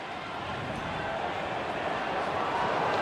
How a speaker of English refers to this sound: The roar of the crowd.